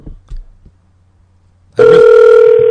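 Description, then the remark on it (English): After a couple of seconds of near-silence with faint low thumps, a loud, steady electronic telephone tone cuts in abruptly and holds without a break, like a call ringing out unanswered. “I want to do this one, it's just he's not answering the goddamn phone.”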